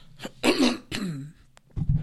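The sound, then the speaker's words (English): Two harsh, wet coughs, the second trailing into a raspy throat-clearing, followed by a brief low rumble of breath or movement. “Like, I'm grossed off by your cough.”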